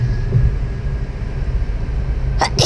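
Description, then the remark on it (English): A single sharp sneeze bursts out right at the end, brief, over a steady low rumbling background like a moving vehicle. “Bless you.”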